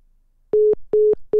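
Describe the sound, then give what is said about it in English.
A phone's hang-up beeping tone: loud, steady mid-pitched beeps in an even on-off rhythm after a short silence, two full pulses and a third starting, with no voices. “Can you hang up so we get the beeping sound effect?”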